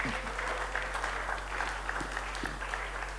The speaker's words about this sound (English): That's a good place for you to clap for me.